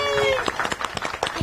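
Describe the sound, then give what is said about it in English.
A church audience claps together in a quick, uneven patter of sharp hand claps to welcome the newly baptized, with a high drawn-out voice whooping over the start before fading under the applause. “And for all of us, let us welcome the newly baptized. All right, let's clap.”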